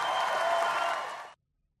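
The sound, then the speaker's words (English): A crowd at a Florida campaign rally bursts into loud, dense applause after the line "Florida is where woke goes to die," a steady roar of clapping and cheering that holds for just over a second before cutting off abruptly into silence. “That was a big applause line on the campaign trail,”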